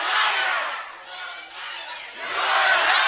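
A crowd of pro-illegal immigration protesters shouts down Nancy Pelosi, roaring in a dense, continuous wall of voices, dipping briefly in the middle before swelling back louder toward the end, with no single speaker audible.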